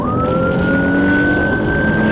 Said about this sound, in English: Some more police sirens coming up in this clip.